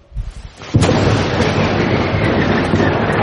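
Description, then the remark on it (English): A loud thunderstorm sound effect: a few low rumbles, then a sharp crack at about three-quarters of a second that gives way to a dense, sustained roar of thunder and rain-like noise. “Well, today we're going to learn about a time when the disciples were in a boat on the Sea of Galilee and a big storm blew up.”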